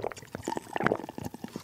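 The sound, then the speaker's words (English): Someone drinking Chappy's Deli brand bottled pure spring water: a quick run of irregular gulps and liquid sloshes, soft and slightly wet, with brief gurgles and no talking. “Just drinking our Chappy's Deli brand bottled water.”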